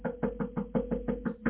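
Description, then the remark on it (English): A rapid, steady series of about eight firm knocks on the door of a radio studio, evenly spaced, with a low constant hum underneath and no talking. “Somebody's at the door.”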